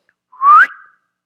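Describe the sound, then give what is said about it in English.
A single short whistle, fairly loud, sliding upward in pitch and then trailing off quickly, heard on its own against silence. “he will raise a signal for nations afar off and whistle them for the ends of the earth.”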